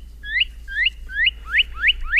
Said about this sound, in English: Well, many birds tweet.